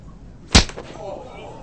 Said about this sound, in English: That is what we call a bitch slap. A bitch slap for a bitch.